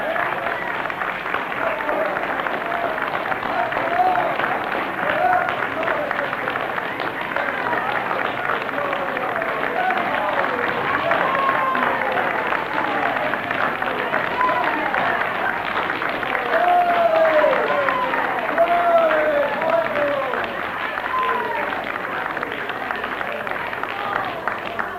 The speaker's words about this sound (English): Oh, clap your hands, all ye people, and shout unto God with a voice of triumph. Now, come on. Praise the Lord.